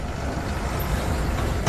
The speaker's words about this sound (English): Meanwhile, back in Gqeberha, trucks from Markman carry manganese in open skips to and from the port 24 hours a day, leaving a trail of pollution.